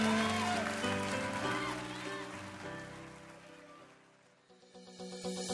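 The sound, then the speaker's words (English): Sustained praise-and-worship music and voices fade down, then the church audience at Christian Life Austin breaks into dense, crackling hand clapping that swells in the last second. “Clap your hands real big all over the house.”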